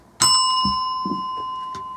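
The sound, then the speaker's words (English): A bell is struck once, sharply, then rings on with a steady, bright tone that hangs for the rest of the moment with faint low rumbles underneath. “Hit that bell again.”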